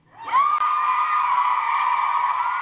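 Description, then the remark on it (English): An audience erupts in sustained high-pitched screaming and cheering during a recorded speech, loud, holding steady for a few seconds without pause; no distinct speech comes through. “I wish I could cut out the screams, guys.”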